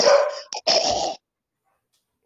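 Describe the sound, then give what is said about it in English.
A dog gives two loud, drawn-out barks, one right after the other, then everything falls silent. “All right, dude, I just imagine your one dog is barking and your other one's just going...”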